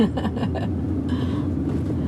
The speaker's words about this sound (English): Oh, and also, Mom, who's not listening. Mom, I'm in a driverless car.